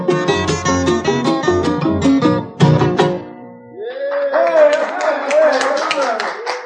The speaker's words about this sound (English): Thank you, gang. I appreciate that nice applause. Thank you very much.